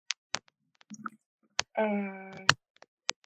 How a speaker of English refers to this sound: I still hear the clicking and I hear you faintly. How's that? No. No, you're still cutting in and out. The clicking.